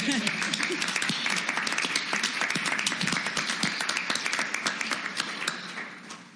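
An audience at a student poetry reading claps steadily for several seconds, a dense patter of many hands that holds fairly loud, then thins and fades slightly toward the end.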